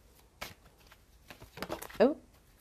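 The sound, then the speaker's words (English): A Universal Weight Tarot deck being shuffled during a tarot reading, with quick papery riffles and flicks in short bursts, ending in a louder snap of cards, while a voice speaks briefly. “We got a card already, but it's face down. I can't see it. I'm feeling drawn to, here we go. Keep shuffling.”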